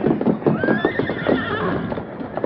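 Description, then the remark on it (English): A horse whinnies with a rising, wavering cry while hooves clop busily on the ground, the neigh riding over a dense patter of steps for a couple of seconds. “Get to your horse and start down the trail.”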